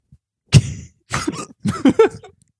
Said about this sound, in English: I shouldn't have coughed. I did that to be funny, but now it's like that hurts.